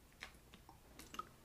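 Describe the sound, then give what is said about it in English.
Quiet sips of water with small wet mouth clicks and slurps, a few soft irregular bursts over about a second and a half, with no talking. “I had to drink some water.”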